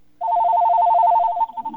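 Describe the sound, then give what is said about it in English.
A phone rings with an incoming call, a rapid electronic warble of two alternating tones trilling steadily for over a second before cutting off, leaving faint low rustling. “Okay, I see who's trying to call me here, but I will.”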